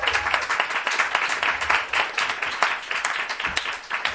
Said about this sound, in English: Since October, bad men have lost their seats of power every week. Applaud for that.